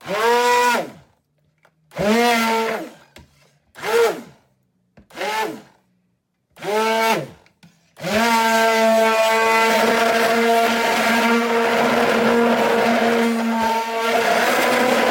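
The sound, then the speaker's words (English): An immersion blender whirs in five short pulses, each motor whine rising and falling in pitch, then runs steadily and loudly for several seconds, churning food until it is smooth. “And I actually, with my gadget here, my immersion blender, I can actually feel that it's getting smoother.”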